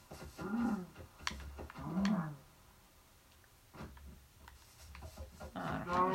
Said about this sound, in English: Okay, I'm gonna kill these cows, right?